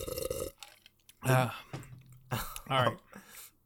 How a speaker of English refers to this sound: Stop coughing. We're all very close in this room. Please stop coughing.